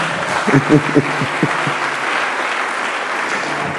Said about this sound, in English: Those of you who are not smiling, you won't clap. Don't worry, I understand you. I know it is part of your makeup. But you, at least for the sake of the person sitting next to you and for the sake of Jesus, everybody clap your hands.